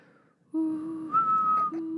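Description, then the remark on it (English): A person whistles and hums at the same time, a low steady hum under a higher whistled tone that shifts pitch, making a warbling, robot-like beeping sound for about a second and a half. “It's like my sad robot. It's my sad R2-D2.”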